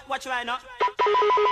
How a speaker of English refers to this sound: Or it's something from like old phone technology. Well, that's the vibe it gives off. But you hear it quite often throughout a lot of UK garage stuff, a lot of UKG.